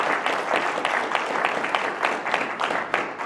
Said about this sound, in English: On behalf of the mosque, I want to give all of you a big round of applause for coming over here. And obviously the volunteers of the mosque, the children, the women, the families, big round of applause to all of them for making this possible.